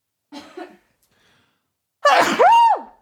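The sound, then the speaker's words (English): A short gasping inhale, a brief pause, then one loud sneeze with a broad burst of noise ending in a voiced, falling tail. No talking. “Hold on, I have to sneeze.”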